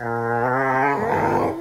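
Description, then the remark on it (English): Two dogs, Addie and Zappa, growl and whine at each other while playing, a continuous vocal exchange, a low rumbling growl shifting into higher, wavering whimpers from Zappa, with no one speaking. “the dogs are talking to each other”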